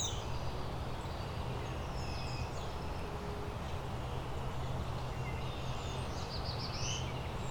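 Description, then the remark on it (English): Distant warbler song: a few short, high, buzzy phrases drift in faintly over a steady background hiss and low rumble, with no one talking. “Is that black-throated blue or is that northern Barilla?”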